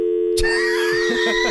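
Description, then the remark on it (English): A loud, steady telephone busy signal tone drones through the whole moment while someone presses buttons on the phone, broken by a sudden burst of noise and faint, muffled voice sounds underneath. “People listening are like, what is he doing to the phone?”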